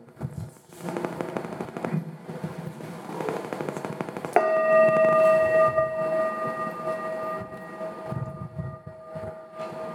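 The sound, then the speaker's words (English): A meditation bell is struck once to begin a Zen sitting session, after a few seconds of rustling, crackly noise, then rings on with a clear, steady mid-pitched tone and shimmering overtones that fade slowly. “The bell really says everything that we need to know about Zen. It is a pleasing sound that calls us to attention and teaches nothing.”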